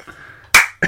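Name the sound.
single person clapping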